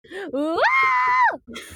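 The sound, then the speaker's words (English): A person vocally imitates the scream of someone jumping out of a plane, a rising voice that jumps up in pitch and holds a loud, sustained "ah!" for about a second before breaking off, with brief talking after. “I don't like it when people jump out of planes in movies and they're so experts that they don't scream when they jump. Like, nah, bitch. I'd be like, ah!”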